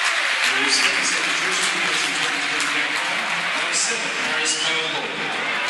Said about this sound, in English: Powell going out of the game, Paris Cowan Hall coming into the game. Getting a good round of applause, Jack Powell. He's done well today for me.